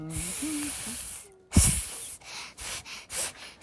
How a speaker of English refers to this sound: Warren, I hear a strange noise. It sounds like a snake.